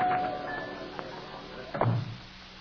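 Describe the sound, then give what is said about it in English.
A door to a woman's dressing room is opened: a soft click, then a brief scraping thud as it swings, over a faint steady background hum with no one talking. “Here, right through this door,”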